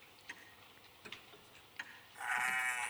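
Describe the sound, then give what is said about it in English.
A few soft ticking clicks in quiet, then a single loud sheep bleat that wavers for nearly a second at the end; the sheep is from Llandover Farm, Merionethshire, a 229-acre farm on hill slopes bordering Snowdonia National Park. “This week's sleep sheep are provided by Mr.”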